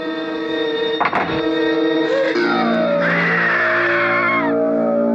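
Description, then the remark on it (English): In a horror film trailer about murder victims, several people scream loudly and continuously, shrill wavering cries overlapping, with a sharp crash early on and the screams climbing higher and more frantic toward the end before cutting off. “Victims died screaming, but for the one still alive, the worst was yet to come.”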